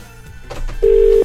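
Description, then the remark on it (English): A steady electronic ringback tone sounds loud, holding one pitch for about half a second after a brief burst of line noise, as an outgoing phone call rings. “Is it ringing? Yep. It's ringing.”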